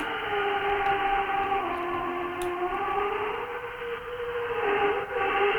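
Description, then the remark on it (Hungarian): A pitched-down drill straining, processed with many effects: a loud, continuous harmonic drone whose tones slowly sag and waver in pitch, like a moaning siren, with no talking. “Ez mondjuk már le van pitchelve, meg kis milliárd effekt van szerintem rajta, nem is olyan sok amúgy.”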